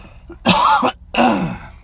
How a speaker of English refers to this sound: I want to stop coughing, but the reason I keep coughing is I did something I haven't done in a long time, and I wish I hadn't done it, but for now, it's okay.